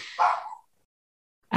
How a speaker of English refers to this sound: What's Honey Bee barking about?